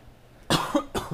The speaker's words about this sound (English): Wow, and on that COVID cough.